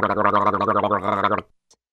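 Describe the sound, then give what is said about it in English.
A person gargles a 3% hydrogen peroxide solution as a mouth rinse in one continuous, wet, bubbling burst lasting about a second and a half, then stops abruptly, followed by a faint click. “You can even use it as a gargle or a rinse.”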